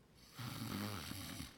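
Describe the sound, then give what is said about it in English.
A single drawn-out snore from a person lying down for a short nap, a low, rumbling, throaty inhale lasting about a second, fairly quiet, with no talking around it. “It's just like, next thing you know, you are snoring.”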